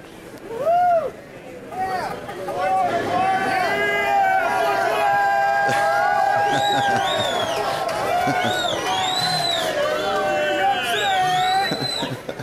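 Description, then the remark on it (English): A large crowd on a New York City street in front of the Housing Works doors cheers and shouts continuously at a countdown, with many overlapping voices whooping in rising and falling pitches, loud and sustained throughout, plus a few high squeals or whistles on top. “I didn't want to pollute the audio by cheering too, but I certainly want to.”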